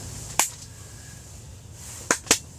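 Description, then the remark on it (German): Three sharp, dry slaps of a baguette, a single smack followed after a pause by a quick pair, each crisp and bright over a faint low hum. “Ein Baguette-Klatsch, das ist schön.”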